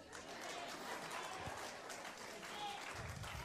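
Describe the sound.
A church audience claps their hands in praise in a dense, steady burst of applause that holds at an even loudness for several seconds, with a few voices mingling in the crowd noise.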